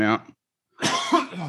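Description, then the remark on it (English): A short muffled vocal burst, a brief pause, then a harsh, strained cough being held back after clearing a bowl of cannabis in one ashy hit, fairly loud, rasping on for nearly a second. “I'm just trying not to cough because it took I cleared the bowl. You know, that ashy hit.”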